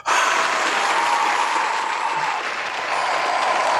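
A crowd bursts into loud, sustained applause, a dense wash of clapping with some cheering that starts abruptly and holds steady at full strength for several seconds.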